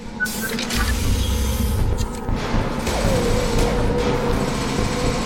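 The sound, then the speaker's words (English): Heavy loading bay doors grind open with a steady, loud motorized whir and a deep rumbling hum early on, continuing as a sustained mechanical drone for about five seconds. “Get your squad into cover, and I'll open the loading bay doors.”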